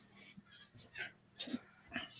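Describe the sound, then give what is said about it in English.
Heavy, ragged panting of a person out of breath after a quick trot to the fridge to get a beer, with quick breathy gasps about every half second, a few catching into wheezy, snorting tones. Fairly quiet, with no talking. “And you're already out of breath.”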